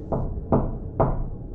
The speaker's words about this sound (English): However, all of a sudden, Z heard three distinct knocks on the door to the back room.